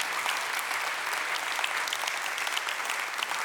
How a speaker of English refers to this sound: a huge, great round of applause now, because she's just driven this thing.